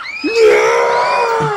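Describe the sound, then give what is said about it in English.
A crowd of onlookers screams in panic as fear gas reaches them, a loud sustained wave of overlapping high-pitched shrieks that swells quickly and holds for a second or two. “But then, the fear toxin reaches the crowd as well.”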